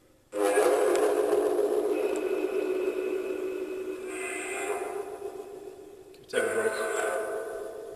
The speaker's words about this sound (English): Do you hear the train?